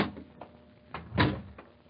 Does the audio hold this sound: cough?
no